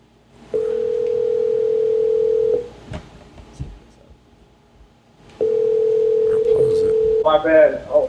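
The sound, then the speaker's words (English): Two long, steady ringing tones of an outgoing phone call, each lasting about two seconds with a pause between, loud; a voice briefly answers right after the second ring. “Right, calling him right now. See if he picks up.”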